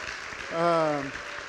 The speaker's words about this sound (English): You can clap too.